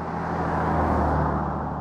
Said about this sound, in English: We were on the side of a country highway. There were almost no birds, and the insects were relatively quiet, and cars and trucks were zipping by at a perfect rate.